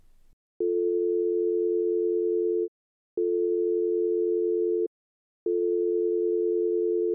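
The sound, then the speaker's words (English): An outgoing phone call rings on the line: three long, steady, low-pitched ringback tones, each about two seconds, separated by short silent gaps, with no one speaking. “I already called him. I'm trying again.”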